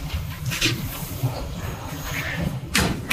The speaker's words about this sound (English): Door. Bring him into the office. Close the door here.